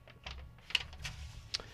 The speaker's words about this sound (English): Sorry about the paper rustling there. That Tradio paid for it, didn't want to cooperate. It didn't want to go back in the file here.